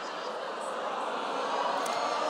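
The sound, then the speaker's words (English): A dense, steady wash of crowd noise, many voices blurred together into one continuous murmur that swells slightly louder toward the end, with no single voice standing out. “I've never heard that, like a sound be produced by a crowd.”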